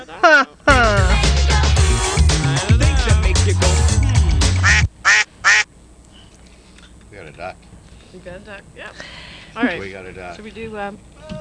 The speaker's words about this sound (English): We got a duck. Yeah. All right. We got a duck.